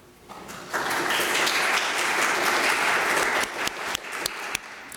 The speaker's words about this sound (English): So let us first take a moment to applaud the many volunteers here at Grace.